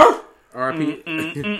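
A dog barks: a sharp first bark, a short pause, then two longer, drawn-out barks with a howling, tonal quality in quick succession.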